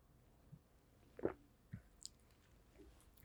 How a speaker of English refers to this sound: I'm going to take another sip of coffee because this is where it gets pretty real.